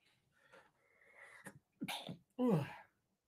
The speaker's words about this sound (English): I might sneeze.